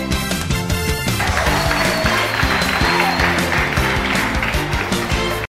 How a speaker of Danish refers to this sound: Så skud ud til Mike Tyson herfra i hvert fald. Der skal lige lyde en ordentlig klapsalve.